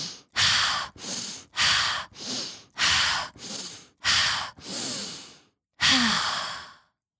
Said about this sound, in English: Okay, phew. After breathing 5 times, I was feeling less overwhelmed and more settled.